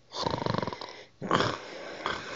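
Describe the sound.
A voice imitates a hare snoring: a rapid, rattling snore in one breath, a short pause, then a second louder, wheezy snort, clear with no other sounds.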